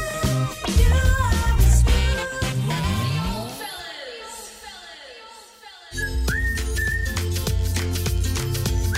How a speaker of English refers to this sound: Is that me whistling? How can you be whistling and talking at the same time? Oh, yes, yes, that's right. So that whistling is all in my head then. Oh, that's good. Good? How can whistling in your head be a good thing?